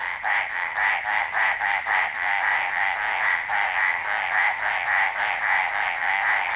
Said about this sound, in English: We leave you this week with the sound of a frog that keeps its head well above water. Carlos Davidson recorded these mountain tree frogs barking away in the Coconino National Forest in Arizona.